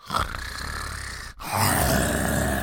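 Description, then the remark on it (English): A voice imitates the strange, rumbling snore of the character Swackhammer in two long, raspy breaths, a brief pause separating a gravelly inhale from a louder, buzzing second snort, fairly loud. “but Swackhammer has a really weird snore. just for the sake of the podcast, could you demonstrate?”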